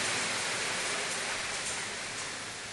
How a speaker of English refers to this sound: So let's give the Lord a big round of applause for our youth. Glory be to God.